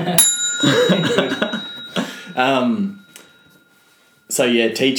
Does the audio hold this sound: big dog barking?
no